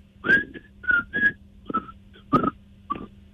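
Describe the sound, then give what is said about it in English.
A man whistles a short song tune, a series of clear pitched notes in separate phrases with brief pauses between them, no talking. “You're just whistling a song.”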